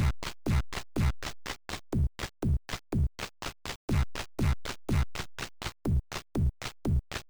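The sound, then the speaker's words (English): Video game pause music plays on its own: a steady, looping groove of punchy thumping beats, roughly four per second, with bright buzzy tones over each pulse and no voices. “But I do have to point out, and I think we've mentioned this before, that the pause music in this game is one of my favorite things in life.”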